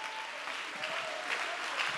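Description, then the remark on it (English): An audience stands and applauds steadily to give God praise, many hands clapping together in a dense, continuous wash of sound that stays fairly even throughout, with no voices standing out. “Stand to your feet and clap your hands and give God the praise.”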